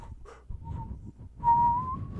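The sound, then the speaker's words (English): A woman whistles a thin, wavering tone in short bursts, then holds a longer note that slowly rises, imitating a siren. It is moderately loud, with faint low rumble underneath and no speech. “She can't even whistle. And they're like, hey, no, she did, like, look, she did this, the siren sound just like this.”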